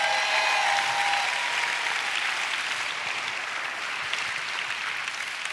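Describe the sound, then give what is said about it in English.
An audience claps hands for God in a dense, sustained burst of applause, steady and loud throughout with no voices standing out, tapering only slightly toward the end. “Give God a hand clap.”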